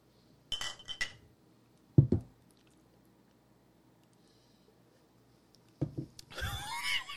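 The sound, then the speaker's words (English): Glasses clink together in a toast, a bright ringing chink, followed by a dull knock and, after a pause, some fizzy, rustling handling noise. No one speaks. “Well, it's only one way to find out. Cheers. Cheers.”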